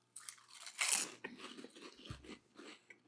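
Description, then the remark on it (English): Loud, crisp crunching of sweet and spicy Honey Lays potato chips being bitten and chewed, starting with a sharp bite and continuing as a series of brittle, irregular crackles with no talking. “And right now, sweet and spicy Honey Lays. Let's get right into it.”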